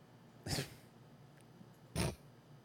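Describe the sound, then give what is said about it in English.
Two short, harsh angry cat meows, raspy and almost hissing, about a second and a half apart, fairly loud, with quiet background between them and no talking. “Then the angry meow, but we only use this one on rare Guys, occasions.”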